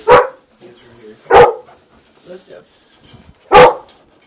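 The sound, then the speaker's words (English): A dog, Huey, barks three times, loud, with irregular gaps between the sharp barks, while faint voices murmur in the background. “There's a big brown fuzzy dog upstairs who's totally harmless.”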